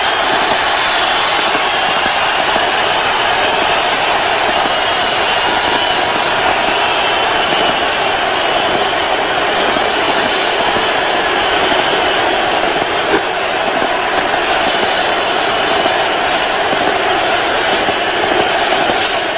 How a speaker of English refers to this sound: How many people does the Superdome hold? I want to say around 60, 65,000. Not 100% sure about that, but this is the reception he got from a massive domed stadium full of fans.